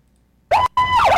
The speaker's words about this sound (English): Oh, sorry. It's a loud siren. Good. That was to wake you guys up.